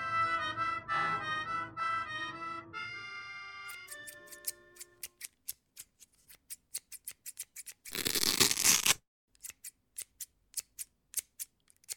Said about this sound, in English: I'm cutting my garter belt into thin strips so I can post a rudimentary message on the window